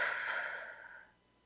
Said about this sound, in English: And in order for that to happen, we have to remember to be open, to take a breath, bring in that air to every cell of your body, all the way to your toes, and then out.